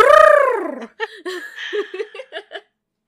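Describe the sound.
Human voices imitate agitated pigeons, opening with a long falling warble and then breaking into a quick run of short, throaty chirring bursts, fairly loud, mingled with a giggle.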